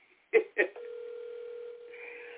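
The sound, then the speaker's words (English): Two quick clicks, then a steady electronic ringback tone drones on as an outgoing phone call rings on the other end; moderately loud, with no one talking. “I'm going to try one more time.”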